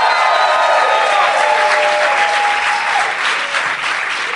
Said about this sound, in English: Everybody. Fired up crowd.